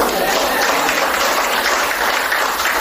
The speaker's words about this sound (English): She's from Hampton, but we're newlyweds. Oh, y'all supposed to clap.